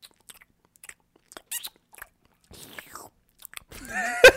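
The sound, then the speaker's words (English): Wet lip smacking and open-mouthed chewing while eating food, a scattered series of soft clicks and squelches with brief pauses, building to a louder, squeaky burst at the end. No talking. “Can I get just a moment of silence of smacking lips right now?”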